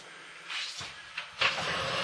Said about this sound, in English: Your attention is brought to this as you start hearing this really, it's like an ungreased hinge, metal against metal, whirring, creaking of old wood sound.